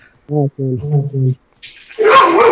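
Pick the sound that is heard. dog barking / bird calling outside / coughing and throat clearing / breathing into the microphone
dog barking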